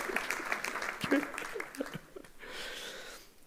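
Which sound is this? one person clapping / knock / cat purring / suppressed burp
one person clapping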